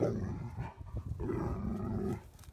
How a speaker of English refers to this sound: There's another dog there.